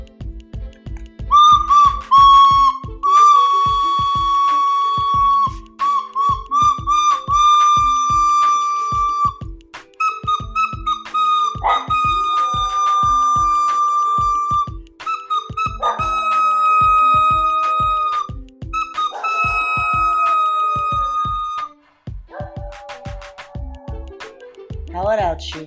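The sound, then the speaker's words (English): A dog howls in long, sustained, slightly wavering notes, repeated in several drawn-out bursts over a steady rhythmic thumping beat, loud throughout. “why don't we end with Shuki, you want to howl it out with us?”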